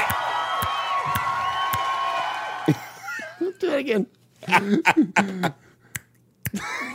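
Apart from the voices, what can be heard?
applause and clapping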